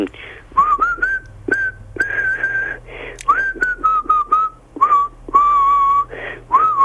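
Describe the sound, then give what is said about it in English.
A tone-deaf person whistles a pop melody, the pitch wobbling and drifting off-key through short broken phrases, with a low steady hum underneath and no talking. “Come on, give us a whistle.”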